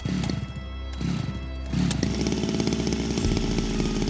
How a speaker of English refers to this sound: But hey, wanna meet Mr. Chainsaw? Mr. Chainsaw, say hello.